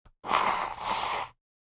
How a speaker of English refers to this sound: Hold on. Your boy has to blow his nose. Like I said, ASMR at its best.